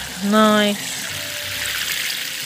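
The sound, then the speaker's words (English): Water pours steadily in a soft, hissy stream over freshly sown French bean seeds for a couple of seconds, just after a short voiced sound at the start. “So the trick is to get the water running a little bit first and then pour it over.”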